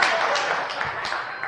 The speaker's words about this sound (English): Y'all know I'm telling you. That's why you're applauding. Because I'm telling you the truth. You know it.